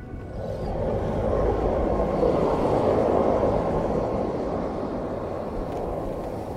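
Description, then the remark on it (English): A helicopter's engine and rotor fill the scene with a loud, steady roar, heavy in the low end and unbroken throughout, with no voices. “Back up in the helicopter, the grand puzzle of this place begins to become clear.”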